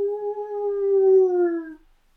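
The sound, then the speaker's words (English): A single drawn-out wolf howl in the distance holds a steady, slightly sinking pitch for nearly two seconds before cutting off, heard alone with no talking. “You start hearing one, what you think are one, maybe two howls in the distance.”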